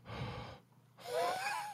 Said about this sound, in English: But I have been having like almost like a little bit like asthma. I think it's allergy-induced, so I'm here breathing like Darth Vader.